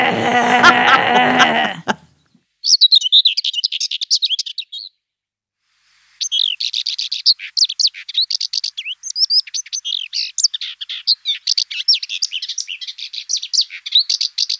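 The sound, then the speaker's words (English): A common whitethroat sings scratchy, rapid warbling phrases, clear, in a short burst and then a longer run with brief gaps. A harsh, buzzy sound precedes the song. “So this is literally just called the common white throat.”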